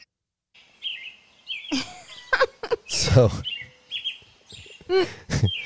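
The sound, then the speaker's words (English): A person, a birder, whistles and voices a string of chirpy bird calls, quick trills and sharp tweets in bursts, fairly loud, with a brief spoken word at the start. “You're going to do your bird calls?”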